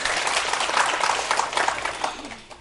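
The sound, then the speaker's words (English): An audience claps in a dense, steady burst of many overlapping hands, fairly loud and sustained for a couple of seconds before tapering off at the end. “That's why I did not mind if you don't applause, as long as you understand and you enjoy my talk.”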